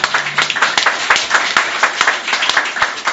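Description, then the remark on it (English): A crowd claps hands together in a steady, quick rhythm, dense overlapping claps forming a continuous loud patter with sharper accents every beat or so. “Let's sing and shout. Woo! Woo! Clap, clap, clap, clap!”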